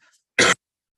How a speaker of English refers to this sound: Battling a cough here.